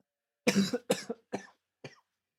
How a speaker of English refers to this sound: He's coughing as he drinks some beer.